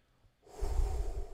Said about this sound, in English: But seriously, let's do some quick breathing, some Tai Chi, you know, lift the orb of energy and things like that.